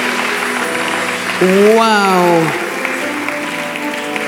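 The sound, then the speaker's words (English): A church audience applauds in a steady, dense wash of clapping throughout, celebrating people coming forward to give their lives to Christ, while a man's voice calls out a drawn-out exclamation over it midway. “Let's clap and celebrate as they come forward.”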